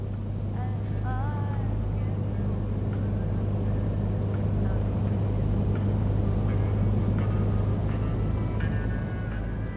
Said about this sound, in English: I'm at one of those interstate truck stops that sells anything from diesel fuel to women. Anywhere in the country, everything would be the same.